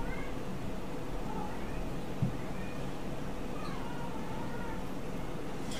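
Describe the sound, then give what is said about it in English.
Cats meow and yowl in a series of drawn-out, wavering cries that rise and fall over a steady background hiss, with no one talking. “Dude, my cats are fucking assholes.”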